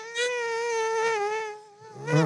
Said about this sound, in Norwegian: de nynner sin mygglyd med konstante vingevibrasjoner. Det jo samme som når du ser en humle. Den sier ikke bzzz med den vesle humlemunnen sin. Den bzzz-lyden kommer fra hvor raskt vingene vibrerer. Og mygg har litt av det samme.